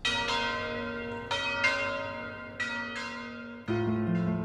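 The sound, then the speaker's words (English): Heavy alarm bells toll again and again in the town square of Florence, rung on Petrucci's order to signal that the city was under attack. Each strike clangs out and overlaps the long ringing decay of the last in an irregular, insistent peal. No voices are heard. “Then, Petrucci ordered that bells be rung in the town square.”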